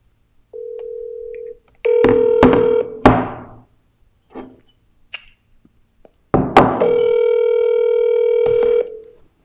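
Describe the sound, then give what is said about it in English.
An electronic telephone ring sounds in bursts as a call is placed to someone at work: a short steady tone, a harsher buzzing tone, then a longer one near the end, with clicks and knocks of a handset between them. Nobody speaks. “I should just make a ringing phone the new theme song”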